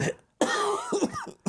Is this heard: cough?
yes